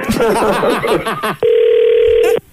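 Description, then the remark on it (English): Talking voices are followed by a single loud, steady telephone ring tone of an incoming phone call, a flat buzzing pitch lasting about a second before it cuts off. “You're going to call me and ask me if I showered?”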